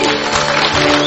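A crowd cheers and applauds together for a man who has just been saved, a loud, steady wash of clapping and shouting voices that fills the whole brief moment without pause.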